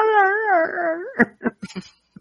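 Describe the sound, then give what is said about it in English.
A small dog at a neighbor's, not in the speaker's house, whines in a long, wavering tone, then lets out several short, sharp yaps in quick succession, ending with one last brief yip after a pause. “Yeah, because all I hear is a little yappy dog.”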